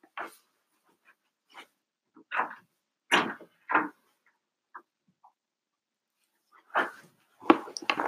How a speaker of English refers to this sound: And can you reach that door? Let that dog in. Okay. She's being an asshole right now.